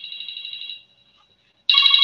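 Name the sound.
phone ringing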